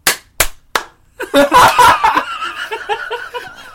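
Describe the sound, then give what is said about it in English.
Three sharp hand claps, made to sync recordings, ring out in quick, even succession, then people break into laughter and snickering. “Let's try a clap as well, just in case.”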